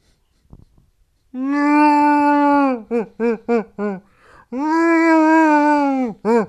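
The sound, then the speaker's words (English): A person loudly imitates Wookiee growling speech, the language of Kashyyyk: a long, wavering roar, a quick run of short yelping bursts, then another sustained roar ending in one brief grunt. “That just seems like a growl.”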